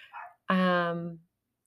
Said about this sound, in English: Yeah. So sorry, there's a little doggy that is just barking up a storm outside.